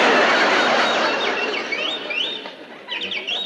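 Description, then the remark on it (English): A caged canary named Yasha squawks and chirps in a busy, continuous flurry of sharp, rising calls, fairly loud, with no voices over it. “That bird again. Shut up, you molting pest. I thought I told you to give that canary some Dr. Gruber's bird seed.”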